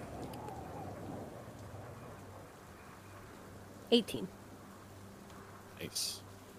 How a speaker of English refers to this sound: But you sit quietly listening to the storm